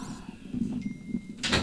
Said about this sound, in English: Listen up, ladies and gentlemen. Can you close the door for me